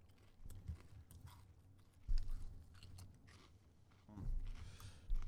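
Close, crunchy chewing as someone munches on a crisp snack, with irregular bites and louder crunches around the middle and near the end, faint murmuring in the background.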